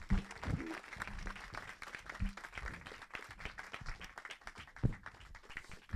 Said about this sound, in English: And the person that I'm introducing is proving that with the phenomenal film, The Harder They Fall. Please put your hands together for the amazing James Samuel.